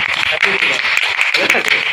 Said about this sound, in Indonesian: Marilah kita tepukan untuk kami dulu, Pak.